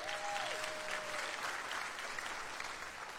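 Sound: audience cheering and applauding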